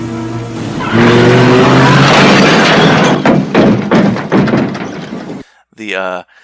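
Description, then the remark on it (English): Loud drag racing car engines in a film scene rev with a rising whine, then a roaring rush of noise broken by heavy thuds and crashes. A brief voice speaks at the very end. “The whole drag racing and car element of this film.”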